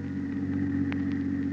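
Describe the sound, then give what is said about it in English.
A car engine drones in a steady, low hum as the vehicle drives at about 25 along a road off the main highway toward a plant, holding an even pitch throughout with one faint click midway. No one speaks. “The drive to the plant was something Peters would never forget.”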